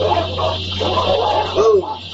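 A few moderately loud dog barks come in short bursts over a steady low hum, with voices blending in among them.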